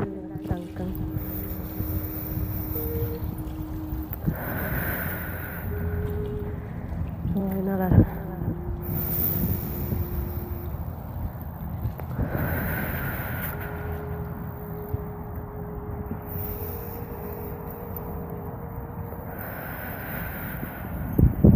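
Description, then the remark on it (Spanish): Slow, deep breaths drawn and released in long airy rushes during a guided breathing exercise, several in a steady unhurried rhythm, over a soft sustained musical drone with no talking. “Con esta respiración dejamos ir todas las emociones y pensamientos negativos que nos hacen.”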